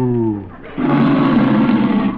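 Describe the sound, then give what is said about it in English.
A cow named Bossy moos while being milked: a low, droning harmonic tone that breaks into a louder, rougher, raspy bellow held for over a second before cutting off. “I'll milk her again. Now watch. Moo.”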